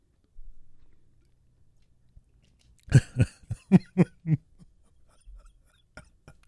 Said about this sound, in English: I gotta sip for this.